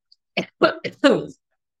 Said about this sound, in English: Yikes, this cough.